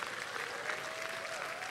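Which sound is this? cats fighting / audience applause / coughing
audience applause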